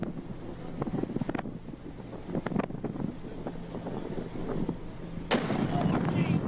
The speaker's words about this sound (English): This explosion is beautiful. It's one of the prettier ones I've seen.